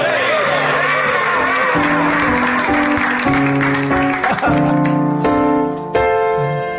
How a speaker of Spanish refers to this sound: Me gusta el aplauso que anticipa. Sí, es la presencia, precoz. Sí, el aplauso sí. Precoz.